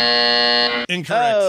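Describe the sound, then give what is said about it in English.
A loud, harsh game show buzzer blares in one steady tone for almost a second during a video game guessing quiz, then cuts off as a voice briefly speaks. “I can't find my buzzer. Here it is.”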